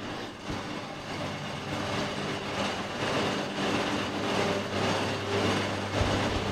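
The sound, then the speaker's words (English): Wool mill machines on the floor of the main working part of the Border Mill hum in a loud, steady drone with a low tonal hum underneath and a regular, rhythmic clatter pulsing through it. No one speaks. “Walking into the main working part of the mill is a hive of humming of machines.”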